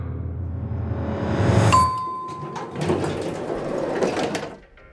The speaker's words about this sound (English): Two men walk into an empty elevator, and the doors close.